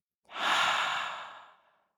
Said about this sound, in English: And as you reflect on that thing, we're going to take a deep breath in and out and hold it at the top. Breathing in, thinking about that one thing, and now breathing out.